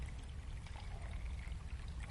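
Liquid pours steadily into a container, a continuous splashing, trickling rush that holds at an even level for the whole couple of seconds, with no voices.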